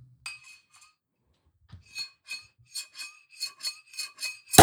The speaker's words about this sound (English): Well done, Senator. We have a perfect saber. Perfect saber job. Beautiful. Center to cut the top right off.